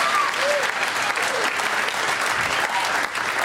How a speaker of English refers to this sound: Nothing like that comedy special applause that you only get when you do a comedy special. And never, ever, ever else.